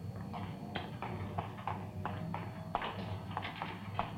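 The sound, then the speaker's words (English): A printing press runs steadily in a print shop, its sharp mechanical clacks repeating in a quick, regular rhythm over a low continuous rumble, with no voices. “Sounds like a press, doesn't it?”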